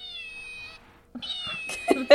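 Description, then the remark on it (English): A squeezed cat plush toy gives two thin, high electronic meows in quick succession, the second followed by a brief rustle and crackle, with a short pause between them. “He hid it in his pocket and squeezed it so it meowed, and I got so excited, I like literally started crying.”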